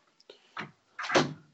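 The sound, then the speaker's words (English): A door swings shut: a faint click and creak, a brief rustle, then a louder full-bodied thud as it closes, with no voices. “I'm gonna close the door.”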